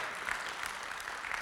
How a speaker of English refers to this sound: Come on, give Him a good round of applause.